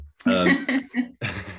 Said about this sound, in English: I will mention I have got a cold today as well. So for my listeners, if you hear me coughing and spluttering, that's exactly why. Not COVID. I've been tested.